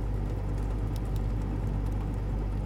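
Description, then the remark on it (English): A steady, low mechanical hum from a liquor fridge drones on unchanging for the whole stretch, with a couple of faint soft ticks over it and no voices. “Just the hum of the cooler.”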